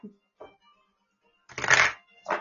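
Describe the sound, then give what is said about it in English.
A deck of oracle cards being shuffled: a couple of soft taps, then a loud, rustling riffle burst followed by a shorter second flurry. “I'm just gonna give this one a really good shuffle because I want to bang out some of the energy.”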